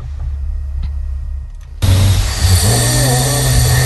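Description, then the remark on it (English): A deep, rumbling snore from a man sleeping at 3 a.m. in a cabin shared by eight grown men rises suddenly out of a low hum and holds loud and harsh, with a gravelly, vibrating drone. No one speaks. “That is a deep, deep snore, isn't it?”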